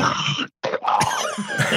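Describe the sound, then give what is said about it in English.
A person loudly clears their throat: a harsh, raspy burst, a brief silence, then a longer gravelly rasp with no talking. “I get to clear my throat on air.”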